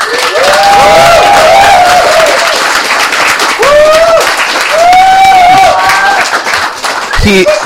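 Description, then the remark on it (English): Loud, sustained audience applause for the show's producer at the end of a show, with voices whooping and cheering over the dense clatter of clapping, and a sharp thump just before it ends. “And one more thing, I would like a big hand for our producer”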